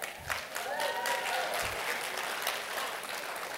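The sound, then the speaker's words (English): A crowd bursts into sustained applause in approval of spanking children, many hands clapping in a dense, steady patter with a few faint voices rising through it, holding at an even loudness throughout. “Why are you clapping for that?”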